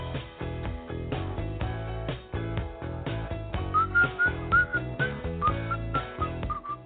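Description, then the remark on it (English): A bright, clear whistled melody enters partway through, weaving short rising phrases over a steady instrumental backing of strummed chords, moderately loud. “Well, that's some good whistling right there.”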